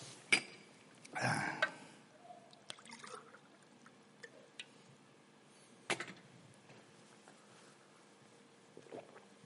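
Quiet handling sounds as someone gets themselves a glass of water: a glassy clink, a short splashy burst of water being poured, then a few sharp knocks and taps spaced over several seconds, with no one speaking.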